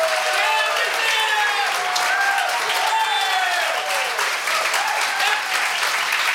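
An audience breaks into sustained applause, dense steady clapping from many hands with cheers and whoops rising over it throughout.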